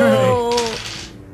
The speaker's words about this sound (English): That sounds like a lot of dice.